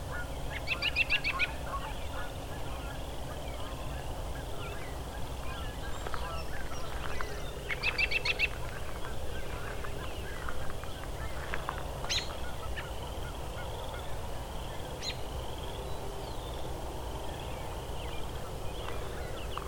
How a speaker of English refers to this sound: Canada geese are getting closer.